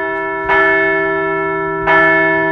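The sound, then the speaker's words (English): A large bell rings twice, each loud strike blooming into a long, shimmering hum of sustained overtones that carries between the evenly spaced hits, with no talking. “We're going to ring the bell one more time.”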